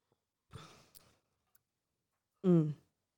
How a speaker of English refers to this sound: Take a sip of water.